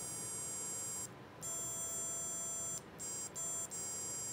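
Steady electronic tones, smooth pure sine waves, from a small speaker on a Stemma amplifier and speaker breakout connected to a Circuit Playground Bluefruit, with different tones played as two buttons are pressed, in a few sustained bursts with brief gaps between them, fairly quiet with no voices.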